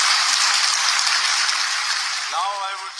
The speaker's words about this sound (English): Hundreds of children from several schools in Cameroon's capital city, Yaoundé, applaud as their peer